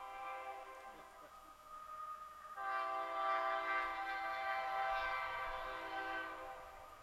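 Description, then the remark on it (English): A train horn blares in a long, sustained tone, swelling noticeably louder partway through and holding steady to the end, with the low rumble of the passing train underneath. “And that's a good place for a cliffhanger till the train passes with its honking.”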